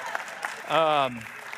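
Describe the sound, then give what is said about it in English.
Steady audience applause fills the whole moment, a dense wash of clapping with no pause, while a single voice calls out briefly over it with a falling pitch. “And then, yeah, we can clap. If we're going to clap, let's commit, all right?”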